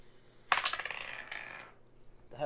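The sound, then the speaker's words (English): A rolled die clatters onto a tabletop, ticking through a quick series of rattling bounces, bouncing again in a double bounce, that fade out, followed by a faint shuffle near the end. “I think the problem is that I'm bouncing it and it's bouncing again. It's a double bounce.”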